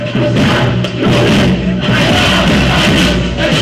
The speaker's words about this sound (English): Today, as the name of each atrocity and massacre carried out by the Assad regime is called out, the crowd call for the death of the president by hanging.